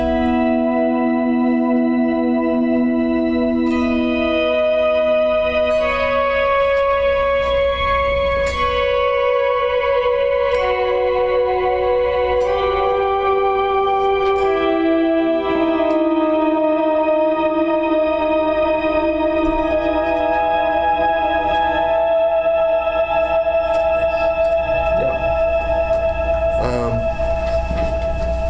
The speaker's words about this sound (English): I have that on something called the organizer here. A lot of you will probably use pogs or something. This is a similar thing to a pog or whammy, and then I have like a shimmer setting on the reverb that will be very familiar to a lot of you.